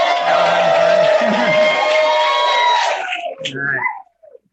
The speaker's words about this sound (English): Everybody give a big cheer for the conference.